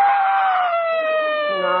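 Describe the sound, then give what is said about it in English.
A hungry baby boy on a train cries in one long, steady wail, high-pitched and loud, sliding gently downward in pitch and holding for nearly two seconds without a break. “No, don't cry.”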